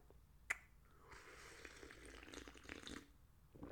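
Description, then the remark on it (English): Slurping of hot coffee early in the morning: a sharp click, then a sustained airy, wet sucking sound lasting about two seconds, fading at the end with no talking. “Sorry, folks, to be slurping and slapping down this coffee, but it is like 6:45 in the morning, for crying out loud, you know?”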